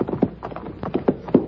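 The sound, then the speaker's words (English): Horse hooves galloping as riders go up a hillside, a run of hollow thudding hoofbeats in uneven quick clusters, moderately loud, with no voices. “The kids were riding up the hillside. I mounted and started after them.”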